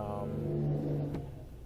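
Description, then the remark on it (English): A car engine revs with a steady, throaty drone, loud, then eases off and fades slightly as the vehicle passes by. No one speaks. “That what a piece of shit car that was.”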